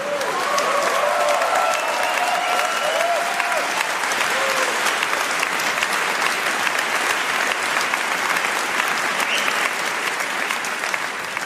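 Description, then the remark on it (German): A large audience applauding steadily, dense clapping that stays loud and even throughout, with a few brief whoops and voices rising out of the crowd near the start. “Lehrer, gebt's zu, gab Zeiten, da hättet ihr nicht geklatscht.”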